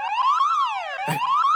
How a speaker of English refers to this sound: That's a door alarm.